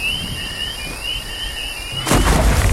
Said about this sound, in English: Explosion sound? Oh, that was the nuke going off. That sounds pretty far away.